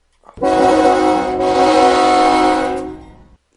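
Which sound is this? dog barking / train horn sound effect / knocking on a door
train horn sound effect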